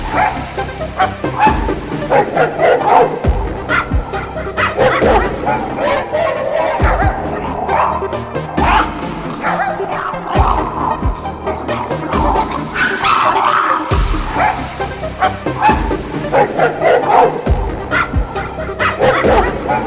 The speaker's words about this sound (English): Five elderly chihuahuas. Wearing dresses. Freaking the fuck out.